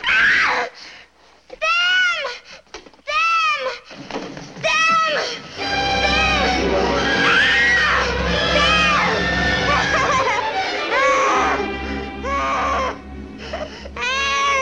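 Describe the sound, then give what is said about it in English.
In a film, a woman screams in repeated shrill, wavering bursts after formic acid is waved under her nose, then keeps up a louder, continuous frantic shrieking over a low rumbling background. “Because, yes, as I said, they wave this formic acid under her nose, and she immediately perks up, and she starts screaming.”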